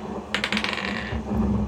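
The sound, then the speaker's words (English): A die clatters across a table in a quick run of sharp clicks that bounce and settle within about a second, over a steady low hum. It is rolled for an athletics check in a tabletop role-playing game. “Okay, roll athletics.”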